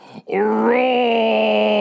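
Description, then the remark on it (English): A man's voice imitates the roar another man made after pounding his chest while staring at Bruce Willis: one long, loud, sustained vocal bellow with a strained, steady pitch, preceded by a brief breathy sound and a short pause. “He made some roar.”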